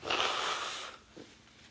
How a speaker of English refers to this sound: Hang on. Pardon me while I blow my nose for a second. I apologize.